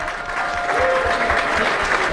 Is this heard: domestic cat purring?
no